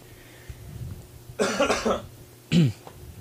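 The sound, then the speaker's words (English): A raspy cough burst of several rapid hacks, followed by a short pause and one more throaty cough, with no talking. “I wish they would come and cure your cough.”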